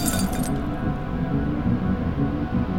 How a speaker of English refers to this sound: And just when I thought I might pass out, and the edges of my vision went red, the TV screen cracked.